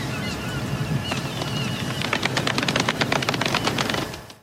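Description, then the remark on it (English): A golf clap celebrating a YouTube channel passing 100,000 subscribers: scattered, polite applause from a small group that builds into a quick, steady patter of light claps over low background murmur, then tapers off at the end. “So golf clap, everybody.”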